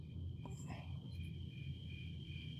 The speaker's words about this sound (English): Yep, that's where the cricket goes. It was funny.